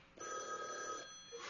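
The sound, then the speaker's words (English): An unanswered telephone bell rings in a single sustained burst, a bright metallic trill that starts abruptly, holds for nearly a second, then cuts off, with no voices present. “Let it go on ringing. It's a trick of some kind. And I won't answer it.”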